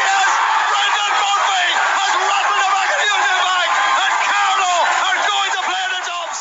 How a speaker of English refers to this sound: The crowd are roaring him on.